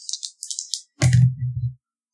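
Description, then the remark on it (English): Dice rattle in a quick series of light, high clicks, then hit a surface with a sharp clatter and tumble with a low rolling rumble that stops after under a second. “Please, God, may it be a freaking positive roll. I am so mad at these dice right now.”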